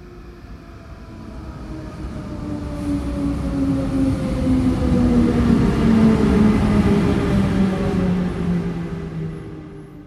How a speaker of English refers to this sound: It is a train. Ooh. It's an electric train entering and leaving a quiet station in Switzerland.